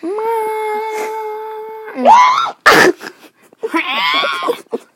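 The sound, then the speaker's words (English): A voice imitates an elephant's trumpet: a long, steady, nasal tone, then a rising squeal, a harsh breathy blast, and a final wavering trumpet-like call. “I'm trying to do an elephant sound.”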